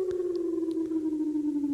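An Israeli alarm siren holds one loud, steady wailing tone whose pitch sinks slowly over the short stretch, sounding alone without any talking.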